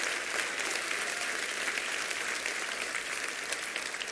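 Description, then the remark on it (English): An audience claps their hands together, a dense, steady wash of crackling applause that holds at an even loudness for the full four seconds, with no voices standing out above it. “Come on, clap your hands.”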